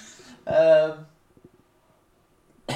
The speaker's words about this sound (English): Now look what you made me do. I'm coughing.